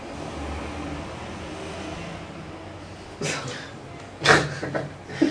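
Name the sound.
car driving past outside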